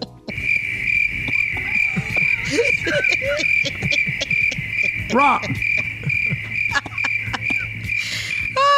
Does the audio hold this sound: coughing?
no